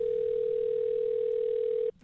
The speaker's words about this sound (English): Listen to the second phone call.